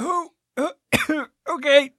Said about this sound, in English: I think I drowned. Well, cough up all the water.